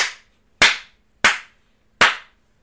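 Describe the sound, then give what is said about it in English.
Four loud, crisp hand claps, spaced at a slow, steady pace, each one ringing out briefly before the next. No voices accompany them. “how many claps and snaps do you give this?”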